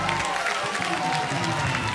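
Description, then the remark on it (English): An audience clapping hands together, a dense, steady wash of claps that stays loud and even throughout, with crowd voices mixed in underneath. “Come on, clap your hands, everybody.”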